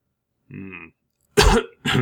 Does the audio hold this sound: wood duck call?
no